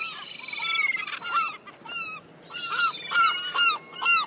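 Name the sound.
seagulls calling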